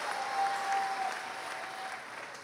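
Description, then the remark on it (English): An audience bursts into steady applause given to the Lord, a dense wash of many hands clapping at once, fairly loud and sustained for the whole stretch, with a faint tone hanging underneath. “Give the Lord a mighty hand.”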